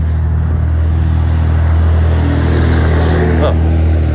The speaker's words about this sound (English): that truck was so loud.